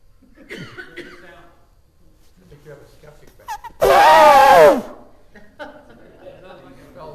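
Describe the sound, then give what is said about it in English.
A person's voice imitates an elephant's trumpet: one loud, brassy, wavering blast lasting about a second, set between quieter murmured vocal sounds before and after. “Do you know that the sound an elephant makes cannot be spelled?”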